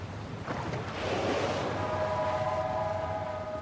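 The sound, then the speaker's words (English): A whale breaching in a scene from the Xbox video game Tell Me Why, heard from a small ferry in a protected channel between snow-capped peaks: a broad, rushing splash swells up and washes away over ocean noise, then a steady, mid-pitched tonal drone holds until the end. No one speaks. “A whale breaches.”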